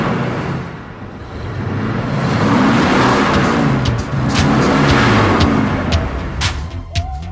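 A loud tractor engine revs for several seconds, its pitch surging up and falling back in waves over a steady mechanical rumble, with a few sharp clicks near the end and no voices.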